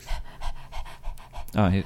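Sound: dog panting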